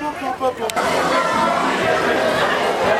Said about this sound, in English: Okay, we're out of the background booth areas and only have ambient crowd noises. So we'll talk to you again. We get closer to the front of the Splash Mountain line.